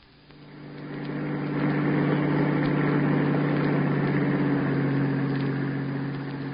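A bus engine runs with a steady, low rumbling drone that swells up from quiet and holds loud throughout, with no voices.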